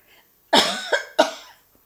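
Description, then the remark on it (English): A quick run of three harsh, raspy coughs from an irritated throat, the first strongest and the next two following close behind, with quiet on either side and no talking. “So he make me cough.”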